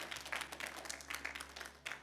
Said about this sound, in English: Come on, y'all, give the Lord a hand clap of praise this morning.